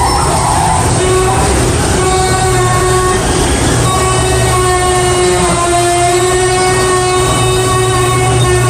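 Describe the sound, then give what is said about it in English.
A rusty garage door creaks and groans in one long, drawn-out squeal, a loud harmonic whine that shifts pitch slightly a few times and never breaks off. “And then there's a garage door that sounds like a T-Rex.”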